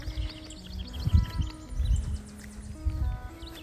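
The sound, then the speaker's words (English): A sparrow, hopping about and looking at seeds, chirps in quick, scattered bursts of short high notes, fairly soft, over a steady low rumble of outdoor background noise. “Hello, little sparrow.”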